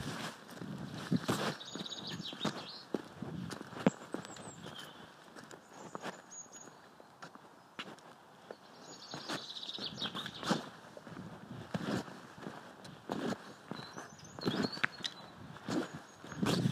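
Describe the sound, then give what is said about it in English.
Steady footsteps crunch along a lane within an equestrian center at a walking pace, fairly loud, with birds chirping faintly in the background of a quiet outdoor setting at five to seven in the morning. “walking up the lane within the equestrian center to tell my daughter Dudley there's a horse in the arena”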